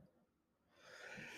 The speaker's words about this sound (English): Sorry, I guess I could have muted to clear my throat there.